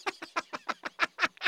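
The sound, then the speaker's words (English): A bird calls in a rapid series of about nine harsh, raspy notes, evenly spaced and growing louder toward the end, with no talking over it. “And then a bird quieted me.”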